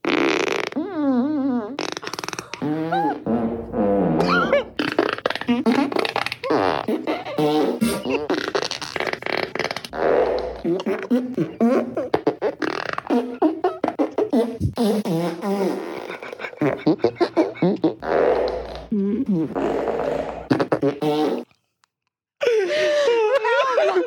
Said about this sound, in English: Yeah, I went ahead and added them all together for a Super Fart remix.